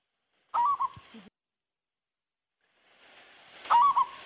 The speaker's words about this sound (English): But they have a beautiful call. They have such a beautiful call. It's soft. It's not like a, you know, a galah or a cockatoo. It's a cuckoo. So I'm going to play you one. This is a peaceful dove.